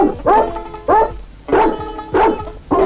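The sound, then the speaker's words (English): A recording of dogs barking the melody of Oh Susanna: five loud, pitched barks in a steady rhythm, each a clear tonal yelp, with no talking. “Can't imagine anyone sitting around being like, let's listen to the dog version of Oh Susanna.”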